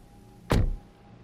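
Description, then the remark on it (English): A single solid car door thud, fairly loud, as someone walks out of a house and gets into their car, cutting through a low steady hum. No engine is heard turning over, just the one brief slam. “They walked back through the house, went outside, and got into their car.”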